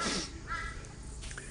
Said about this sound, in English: Just for a surprise, a crow's coming in just to add into the discussion. It's not happy.